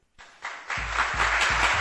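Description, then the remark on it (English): A roaring round of applause for Adam Schefter on a Sirius radio show swells up within a fraction of a second and holds loud and dense, with a steady low thumping pulse underneath, like stomping or a beat. “Adam Schefter, ladies and gentlemen, let's give him a roaring round of applause, shall we?”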